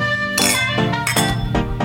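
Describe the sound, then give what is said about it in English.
Wine glasses clink together in a toast several times in quick succession, each bright tap leaving a sustained ringing tone, with a faint murmur underneath. “Cheers, guys. Cheers.”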